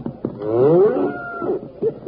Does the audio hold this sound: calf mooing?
yes